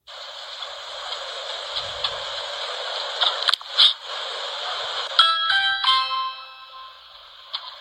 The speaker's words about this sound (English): So Amazon driver rings the doorbell, is going to deliver a package. Not sure why he's ringing the doorbell.